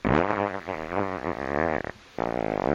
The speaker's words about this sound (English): Long and squeaky. Here comes a long and squeaky fart.